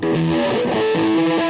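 An electric guitar played through a Behringer HM300 Heavy Metal Distortion Pedal, thick, buzzing and saturated, with a few sustained notes shifting in pitch over a brief loud phrase, without any talking.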